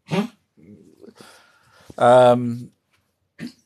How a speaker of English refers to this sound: Sorry, there's a dog in the background.